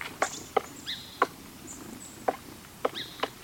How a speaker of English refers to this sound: A familiar sound of spring. A woodpecker hard at work, carving out a nest hole in a tree trunk.